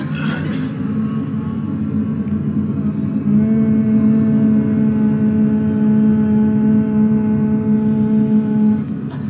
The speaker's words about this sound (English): I'd like us to just hum a little bit together. Do any kind of humming you want.